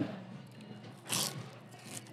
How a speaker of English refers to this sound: Damn, crunching all in the mic.